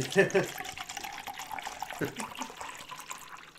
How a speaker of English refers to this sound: Alright, I drank all my water at this point. So, now I'm going to be the annoying guy and just refill my water. But I always figure if I'm going to do it, I might as well do it like...